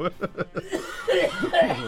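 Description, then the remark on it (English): A man gives a rapid series of raspy wheezing coughs, about five short bursts, then drawn-out throaty, strained rasping sounds that come across almost like a hoarse chuckle. “He might not be that young with that wheezing cough.”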